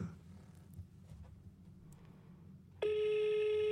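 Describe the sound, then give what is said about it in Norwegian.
A low background rumble, then a loud, steady electronic ringing tone of an outgoing phone call to Kristin Husøy, placed from a hidden number, starts near the end and holds through to the finish. “Da skal vi se om Kristin Husøy svarer når jeg ringer henne.”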